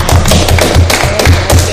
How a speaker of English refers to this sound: Just clapping up for my boy.